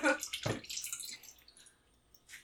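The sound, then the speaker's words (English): Water sloshes and splashes in a few quick bursts at a water stop, a heavy pour near the start as it is filled two or three times, then a softer swirl as it is swished around, and one more splash at the end as it is dumped. “And, of course, with a water stop, I fill it up 2 or 3 times, do a quick little swish around, and then dump it.”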